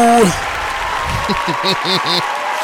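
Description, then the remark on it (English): Steady audience applause for radio station WWPR-FM 105.1 fills the whole stretch, a dense wash of clapping, with a few short rising-and-falling vocal whoops breaking through over it toward the end. “Let's give it up for them.”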